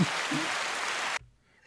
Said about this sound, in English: That's my other sound effect I have loaded in. Is that rain? No, it's applause.